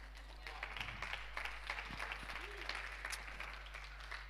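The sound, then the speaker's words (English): An audience claps steadily, a dense patter of many hands that stays fairly soft and even throughout, with a low hum underneath and no voices. “Yeah, you can clap.”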